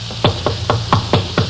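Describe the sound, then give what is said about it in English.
Six firm knocks on a wooden door late at night, in quick, slightly uneven succession and fairly loud, with no voices over them. “Open the door”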